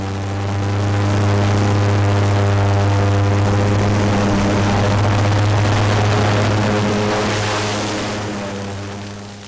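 An airboat used for fire management at the River of Grass burn, a roughly 31,000-acre burn for hazardous fuel reduction, runs its engine and propeller: a loud, continuous drone with a strong low hum and buzzing harmonics, swelling slightly and easing toward the end. No one speaks.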